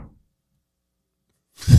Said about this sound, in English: What is happening on your house? The whole fucking house is haunted. Slamming doors as hard as they can.